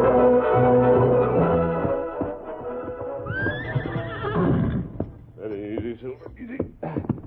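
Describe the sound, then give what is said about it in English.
A horse lets out a loud, quavering whinny midway through, followed by shorter snorts and neighs, while hooves clop on the ground and muffled voices murmur in the background. “Take Brady's horse, that one over there.”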